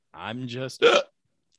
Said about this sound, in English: I'm not drunk. I promise. Good hiccups. That white claw is really kicking in hard.